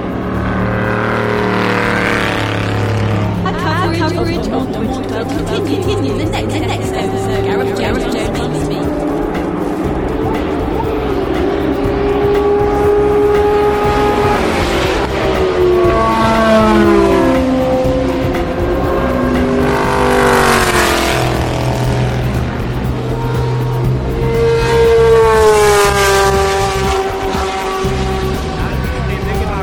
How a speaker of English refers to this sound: I know this has been a short show, but don't worry, there'll be another one from Le Mans 2012. I'll leave you with the sound of the cars going by.